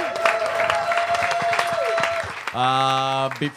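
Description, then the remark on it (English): A show audience gives another round of applause to the guests who were put on the spot while high, in a dense, steady patter of many hands with a thin held tone running through it, then a loud sustained musical chord cuts in over the clapping for the final second. “Give these guys another round of applause.”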